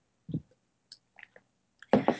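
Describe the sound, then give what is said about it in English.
Someone sips water: a soft gulp, a few faint wet mouth clicks, then two louder swallowing sounds close together at the end. No one speaks. “I'm just going to get some water here.”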